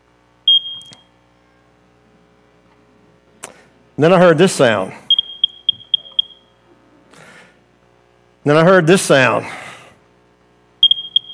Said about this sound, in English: So obviously, you know this is a smoke alarm, right?